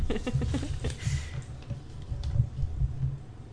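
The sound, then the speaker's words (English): A vibrating object rattles against a hard surface with rapid, uneven clicking and a low buzzing hum, fairly steady, while a piece of paper is slid underneath it to stop the vibrations. “I just put a piece of paper under it.”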